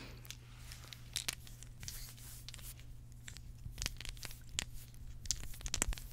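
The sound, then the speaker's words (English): Crinkling and snipping as scissors cut through the plastic packaging of a chocolate-covered, corn-flake-like snack, a run of sharp, irregular crackles over a steady low hum, with no talking. “Okay, good thing I brought scissors.”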